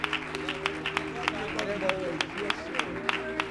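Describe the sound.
An audience claps hands together in a quick, fairly steady rhythm, sharp claps ringing out over a low sustained hum of voices or music in a large room.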